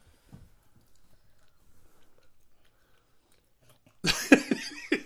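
Someone chews food: faint, soft mouth clicks for a few seconds, then a burst of loud, crunchy, wet chewing near the end. No one speaks.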